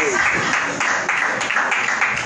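An audience applauds in a dense, steady wash of clapping that holds at an even loudness for a couple of seconds, with some murmuring voices mixed into the noise.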